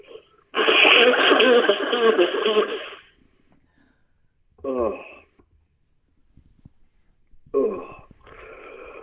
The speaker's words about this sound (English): Hang on, I gotta blow my nose. Hang on.